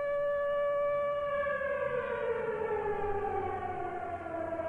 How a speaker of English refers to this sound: I wish there was just like a bell or something, like some sort of siren went off at arbitrary times, and that was how you knew that it was the holidays.